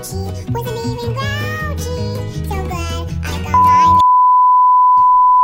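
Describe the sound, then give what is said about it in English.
A loud, steady censor bleep, a single pure tone, cuts in over a children's song with a singing voice near the end, then keeps sounding alone after the music stops. “Anyways, we're going to definitely add a little bit more beeping into there, but this is just a YouTuber that made a four kids song”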